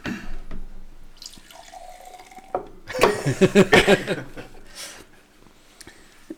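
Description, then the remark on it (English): Liquid is poured into glasses with a steady trickling, splashy stream, followed by a brief burst of voices and light laughter before it fades to quiet. “always ends up with the heaviest pours. It's the advantage of being the pourer.”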